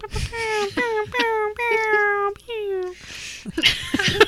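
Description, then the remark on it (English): A voice imitates sci-fi laser blasts: five quick, descending 'pew' sweeps in a steady run, somewhat meow-like, ending with a few breathy, noisy sounds. “I feel like I just sound like a cat meowing whenever I do that. Kind of sound like a laser.”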